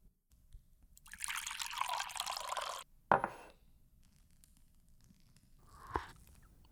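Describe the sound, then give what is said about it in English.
Hot sage tea pours steadily into a glass for about two seconds, then the glass lands with a sharp clink. A quieter knock follows a few seconds later. Clear, no voices. “I fill myself a piping hot glass of it.”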